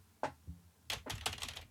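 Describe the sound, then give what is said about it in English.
Quick keyboard typing by a bank teller at a bank, a single tap followed by a rapid burst of several clicky keystrokes, fairly clear with no voices. “The bank teller, she types in some keys.”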